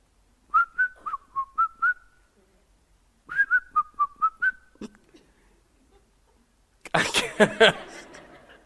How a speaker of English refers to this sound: It's hard to whistle. I don't know why I can't get it.